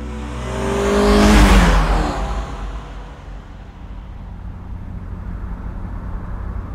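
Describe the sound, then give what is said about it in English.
A new SUV's engine swells loudly over the first couple of seconds as the vehicle pulls away, then settles into a steady, lower driving rumble with road noise. No one speaks. “New car. I never pegged you as the SUV type.”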